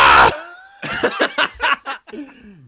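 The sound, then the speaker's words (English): A voice imitates a man's scream: a harsh, noisy opening blast, then a rapid string of strained, choppy vocal bursts, loud, trailing off in a falling, laugh-like tone. “And he screams but, like this.”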